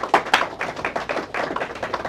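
A crowd gives itself a round of applause for coming out, many hands clapping at once in a dense, irregular patter. The crisp claps stay steady and fairly loud for about two seconds, with no voices.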